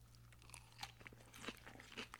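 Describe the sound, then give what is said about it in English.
Crunchy chewing of salad, a steady series of crisp bites and crunches with a low background hum and no talking. “I almost just choked on a little piece of something there. You guys always remember to chew your salad thoroughly.”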